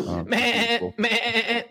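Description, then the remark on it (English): Betty, a mascot goat, bleats loudly, two long, quavering cries in quick succession, with a short grunt just before the first. “Before we get out of here, I just wanted to pull up our mascot really fast. This is Betty the Goat, if you haven't seen her.”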